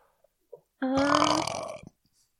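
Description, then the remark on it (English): A single loud, drawn-out burp lasting about a second, starting with a low tonal rumble that rises slightly before breaking into a raspy, gurgling finish. A couple of small clicks come just before it. “Yeah, there should have been more burp humor. There wasn't that much burping.”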